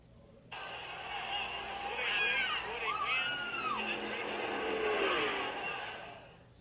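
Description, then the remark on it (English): A pack of race trucks roars past on a track as a Truck Series race takes the green flag, engines revving and sweeping up and down in pitch as they go by, loud and continuous for several seconds. “Truck Series race just took a green flag.”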